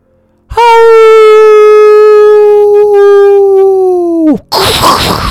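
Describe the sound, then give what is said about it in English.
A single loud, sustained wolf howl outside holds a steady mid pitch for nearly four seconds, then drops off sharply. A harsh, rumbling crash of thunder follows right after it. “A wolf howled outside, the biggest wolf noise that any of them had ever heard.”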